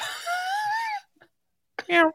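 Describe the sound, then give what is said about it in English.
A 12-pound male cat trying to fit through an open window wails twice: a long, wavering yowl that rises and dips in pitch, then a shorter, sharper cry after a brief pause. No talking, just the cat. “Dude, I swear to God, this freaking cat. There's like my window's open and he's like, he's 12 pounds and he's trying to fit in the window.”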